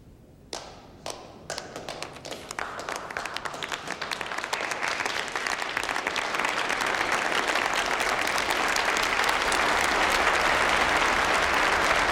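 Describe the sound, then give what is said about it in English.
Applause in a recorded hearing, for a witness admitting wrongdoing, starts with a few scattered claps, then swells into steady, dense clapping from a crowd that grows louder and holds through the end, with no voices. “Yeah, it's like you're being applauded for admitting all the wrongdoing.”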